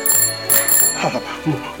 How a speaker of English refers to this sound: Maybe I should try the bell. Just to get an all-round review of the bike. Mm-hmm. That's a good, cool sounding bell.